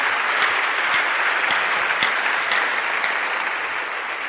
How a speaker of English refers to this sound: Pray for you again and then you come and give the Lord a mighty clap offering.